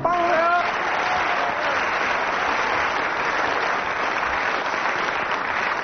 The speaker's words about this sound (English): Well, judging from audience applause, 9 out of 10 for that one.